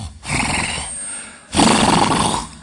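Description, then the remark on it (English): A voice imitates a bull's bellow with two long, harsh, roaring bursts, each lasting over a second, the second louder and rougher than the first, with no talk in between. “And he turns around and there's a big old bull.”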